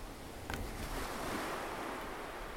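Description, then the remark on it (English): Ocean waves wash onto a shore in a steady, rushing roar, with a surge swelling in about half a second and holding through to the end, with no voices. “I captured these for you from the sea. Like I brought these to you from the sea, and here they are.”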